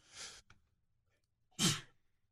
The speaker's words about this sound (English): Excuse me, I just sneezed. I'm a double sneezer. Hang on, that wasn't pretty.